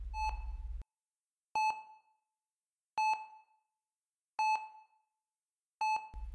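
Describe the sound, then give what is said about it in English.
A hospital ICU monitor beeps in a steady, repeating pattern: five clear electronic tones about one and a half seconds apart, each ringing briefly before fading, with a low hum at the edges. “I think it wreaks havoc on the central nervous system because the shrill sounds of the code blues and the harsh beeping of Archer's monitors would just not leave me alone.”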